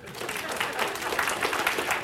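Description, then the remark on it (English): An audience claps steadily for a couple of seconds, a dense, even patter of applause at moderate volume with no voices rising above it, applauding the helper who built the sermon slides. “Everybody give Reese a hand of applause.”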